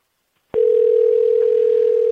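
After a brief silence, a telephone ringback tone starts abruptly: a loud, steady electronic hum that holds unbroken to the end, with no voices.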